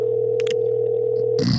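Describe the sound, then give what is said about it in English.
A phone's outgoing ringing tone: one steady electronic purr that holds for over a second before breaking off into a short burst of rustling noise. No one speaks. “He's calling. We're calling. We're calling.”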